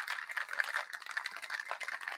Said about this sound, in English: Pour that into your shaker. Shake this up like there's no tomorrow.